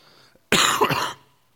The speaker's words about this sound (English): I'm going to have to cough occasionally. I've coming off a bad cold the last few days, but I'll get there.